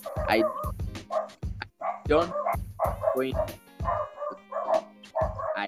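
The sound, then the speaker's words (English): Several dogs bark repeatedly in quick, overlapping bursts, loud, with occasional higher yips mixed in and brief pauses between volleys. “My dogs are being rude.”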